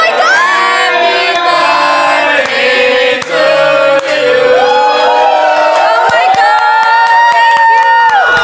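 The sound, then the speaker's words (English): A group of people cheer and whoop together, loud, their overlapping voices sustained for several seconds with rising shouts and excited calls, celebrating a surprise birthday. “That was a surprise for Maggie”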